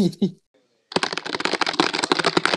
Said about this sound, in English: Just typing up an in-depth review of the TGCM podcast